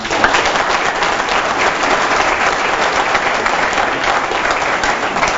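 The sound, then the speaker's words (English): A crowd applauds Advocate Vusi Pikoli steadily, dense overlapping claps forming a loud, even wash of sound that holds for several seconds without fading or breaking into speech. “And for that, I would like to applaud Advocate Vusi Pikoli.”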